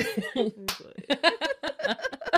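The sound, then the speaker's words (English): Quick, uneven hand claps patter through the second half, sharp and fairly loud, with laughing voices and chatter underneath and a single sharp smack just before. “That was we just clapped to our chlamydia.”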